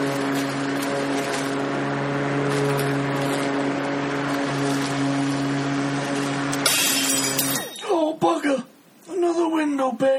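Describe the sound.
A steady engine-like drone hums for several seconds, then a sudden loud crash of breaking glass bursts out as a stone flicked up while mowing the grass smashes a pane of glass, followed by a person talking.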